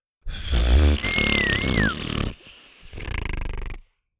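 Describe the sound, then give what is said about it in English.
Wet, sputtering blowing from a failed attempt at a finger whistle, spitting into another person's face, with a thin, wavering whistle tone flickering briefly through it. A second, shorter spitting sputter follows before it stops. “… tried again and spit in Sawyer's face.”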